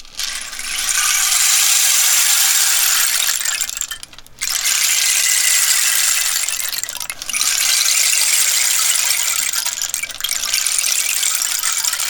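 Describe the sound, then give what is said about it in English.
A rain stick is turned over repeatedly with no EQ, recorded with a small Karma omnidirectional microphone, producing a steady, bright rush of pattering beads in three long cascades separated by brief pauses. The hiss is crisp and high, with no voices. “Well, Paul, you've got a rain stick, haven't you?”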